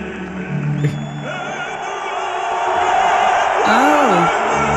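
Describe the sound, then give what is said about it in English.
A crowd hoots and hollers in a steady, dense roar, recorded on a cell phone, with individual whoops and yells rising and bending in pitch over the wash, growing slightly louder toward the end; no chant emerges. “Yeah, but it's hooting and hollering, and there's no chant in the middle. It's just straight-on noise.”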